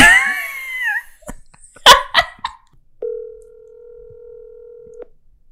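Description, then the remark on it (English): A single steady outgoing ringback tone hums for about two seconds during a late-night call to someone's mom, preceded by a brief whiny animal-like sound and several sharp taps or clicks; no one talks. “I dare you to call your mom and tell her you got another cat.”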